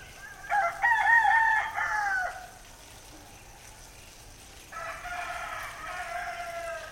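A rooster crows twice: first a loud, warbling call lasting nearly two seconds, then after a quiet pause a second, slightly softer crow that stretches out to the end.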